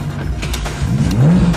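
A car engine is started by pressing a button on a starter switch: it cranks and catches, then revs up loudly with a rising, sweeping whine, with no voices over it.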